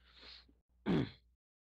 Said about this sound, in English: You say bless you to sneeze. You say bless you to sneeze.